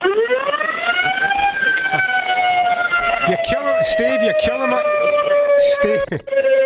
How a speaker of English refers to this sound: Okay, listen, I collect all kinds of stuff. I collect fire engines. Listen to this.